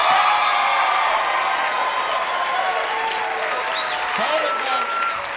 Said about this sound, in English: As Slocum makes his getaway, Gary returns to the stage and the crowd roars.